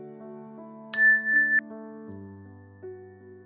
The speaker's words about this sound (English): And as always, we'll begin the meditation with the ring of the chime and end the meditation with the ring of the chime.